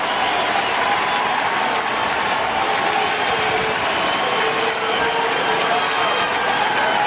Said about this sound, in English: But Bell goes off to an ovation.